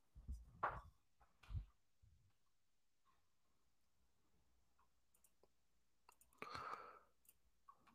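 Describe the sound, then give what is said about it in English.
A handful of soft, quiet clicks on a computer keyboard as someone types into Skype, tapped out in irregular bursts with long silent gaps between them and no voices. “I'm going to type in your Skype for a second.”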